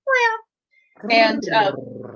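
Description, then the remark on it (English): A person wearing a kitty Halloween costume mimics a cat with a short, clear meow, then after a brief pause lets out a longer, drawn-out yowling meow that trails off, fairly loud. “I am wearing my this week's Halloween costume. I'm a big old kitty.”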